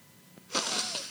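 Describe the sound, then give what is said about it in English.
A single sharp sniff, a breathy rush of air drawn in through the nose, fairly loud, lasting just over half a second after a brief quiet click. “How would you describe the sound of a sniff?”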